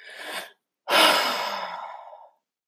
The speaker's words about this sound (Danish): … tager en dyb vejrtrækning.